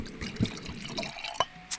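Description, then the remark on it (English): Wine is gently poured into a glass at Leto, with a soft continuous gurgle and a few brighter clinks and drips toward the end. No voices. “Oh, that sounded like a beautiful pour this morning”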